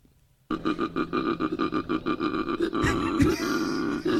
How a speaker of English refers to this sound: All right, here's what a koala actually sounds like.